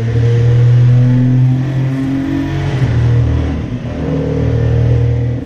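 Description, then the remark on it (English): A loud turbocharged race car engine revs, the turbos audible, its deep droning tone holding steady, dipping briefly mid-clip, then climbing again. No one speaks. “You know, for a turbo, you can hear the turbos, it's loud.”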